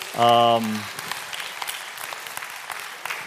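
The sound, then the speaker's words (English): A loud, steady buzzing tone sounds briefly at the start, then an audience at a church Sunday service breaks into a round of applause for the women who played in a football game, many hands clapping in a dense, even patter that keeps going. “So we give them a round of applause to all the sisters who played.”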